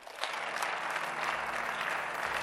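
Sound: audience clapping hands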